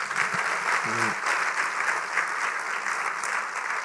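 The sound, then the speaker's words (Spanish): Steady applause from an audience giving a round of applause to the Lord, a dense wash of many hands clapping at an even level throughout, with a brief murmur of voices underneath near the start. “¿Podemos darle un aplauso al Señor si lo creemos?”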